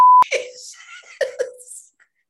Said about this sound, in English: I probably shouldn't have swore there. It's okay. That's why we got the beep.